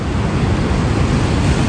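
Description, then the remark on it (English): A steady, loud roar of ocean surf washing against the shore, continuous with no distinct pauses, mixed with some wind rumble and no voices. “Just listen to those waves. It's really relaxing.”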